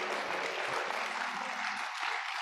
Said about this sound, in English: So we just thank and praise God. Come on, give the Lord another hand clap of praise for that.